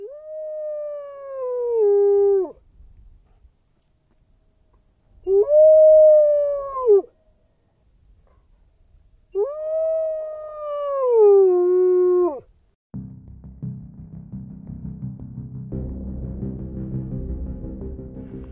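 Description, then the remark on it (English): Three long, loud howls from outside on a dark, windy night, each rising briefly then sliding down in pitch, separated by short pauses, followed by several seconds of low, rushing noise. “There was a howl sound from outside.”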